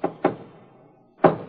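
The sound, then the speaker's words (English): A coded knock: three solid knocks on a wooden door in a deliberate pattern, two quick raps close together, a pause of about a second, then one final knock, fairly loud. “Remember the knock in case you come back by yourself.”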